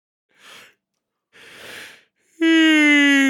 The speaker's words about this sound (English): This will be good for the yawn compilation of this episode.